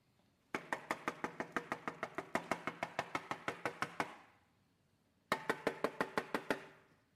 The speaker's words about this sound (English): How long would you stand at a dark door and knock when it refused to open?